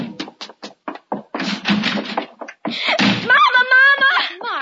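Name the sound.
door slamming shut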